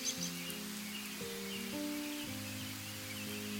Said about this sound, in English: Right now, as I record this, I am looking out my window at the rain pouring down, and you may hear from time to time thunder, because I am in a storm.